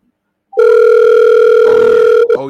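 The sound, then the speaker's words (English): A loud, steady telephone dial tone hums for almost two seconds before cutting off abruptly into a brief, different tone as someone dials to call a person back after the phone line got disconnected; no one speaks. “I will call Smitty myself.”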